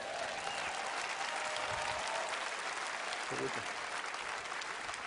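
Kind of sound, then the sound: crowd, audience clapping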